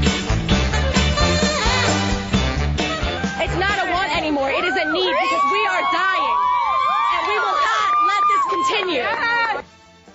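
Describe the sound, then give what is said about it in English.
A crowd cheers loudly and continuously at a woman's rhetoric, a dense mass of shouting voices with rising and falling whoops and yells, sustained for about nine seconds before cutting off abruptly. “Isn't it odd when you get people that cheer, hysterical rhetoric like that?”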